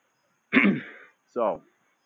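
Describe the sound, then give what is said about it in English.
Two throaty coughs from a person whose drink of water went down the wrong way, the first a rough, noisy hack and the second shorter and more voiced, with a brief pause between them and quiet before and after. “I'm sorry I'm coughing so much. I drank water before and must have went down the wrong pathway.”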